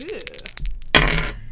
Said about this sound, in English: And I'm going to roll my percentile dice. Ooh. And we'll see how these things go. And then we have to look in our 100. All right. Get that ASMR. Ooh. Metal dice.